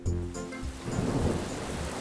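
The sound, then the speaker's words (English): Heavy rain pours steadily while a deep rumble of thunder rolls underneath, loud, during a storm with lightning, filling the whole stretch with dense hissing noise and no voices. “Wow, it's really raining hard.”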